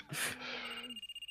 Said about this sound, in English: Thankfully, the phone rings.